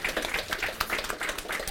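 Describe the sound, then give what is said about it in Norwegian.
An audience applauds Mette Nord, leader of the union Fagforbundet, as she is called up. Dense, overlapping claps form a steady patter for a couple of seconds, moderately loud, with no one speaking over it. “En stor applaus til Mette!”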